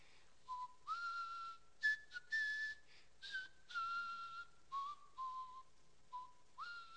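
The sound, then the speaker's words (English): A person whistles a slow, hymn-like melody alone, with clear sustained notes stepping up and down in short phrases separated by brief pauses, moderately loud. “He's whistling. You know what he's whistling?”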